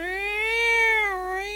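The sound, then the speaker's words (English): A single long, drawn-out meow from a giant cat on a rainy street, loud, with no other sounds; the tone rises gently, holds, then dips slightly before trailing off. “There's a giant cat at the end of the thing.”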